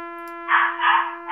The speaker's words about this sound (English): That dog's already shaping up to be another asshole, the fucking barking nonstop. That's got to be a really tiny, just yappy dog.